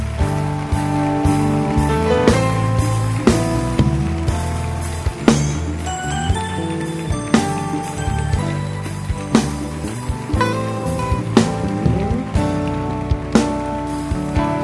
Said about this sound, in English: Keep clapping for them.